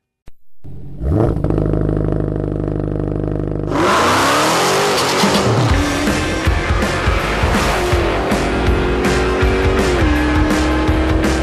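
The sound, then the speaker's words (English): A Dodge Charger muscle car's engine idles low and rumbling, then roars as it revs hard, its tires squealing loudly and continuously through a burnout that burns rubber, intense with no voices. “It's Dodge Performance Days, where we celebrate speed, power, and performance, and that new car smell gets replaced by the scent of burnt rubber with Dodge Charger, and it's available best-in-class.”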